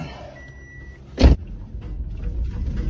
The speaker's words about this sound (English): I've just tucked this cable tie on his tail shaft, and when it spins around, it should slap the exhaust pipe here and make a bit of a racket.